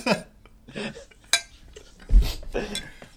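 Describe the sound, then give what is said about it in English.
A spoon clunks and scrapes against a dish several times in an irregular rhythm as a man eats a strudel, with sharp clinks standing out, followed by a few heavier knocks and low rustling. “It's not just the clunking of the spoon.”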